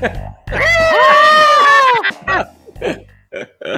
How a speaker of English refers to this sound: Insert goat noise.